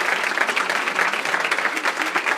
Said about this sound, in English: Let's have a round of applause for the Sigma News here.